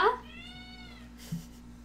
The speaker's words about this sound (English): Cat's being loud.